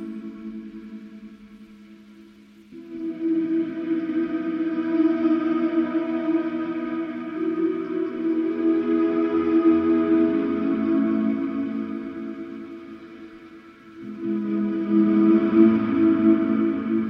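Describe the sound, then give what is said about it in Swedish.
A sustained vocoder chord fed into a Space Echo tape delay, triggered by blowing while a chord is played, with thick repeating layers, a gritty, dirty texture and a swelling wash that dips briefly before a new chord enters louder. “Det är alltså vokoder in i ett Space Echo.”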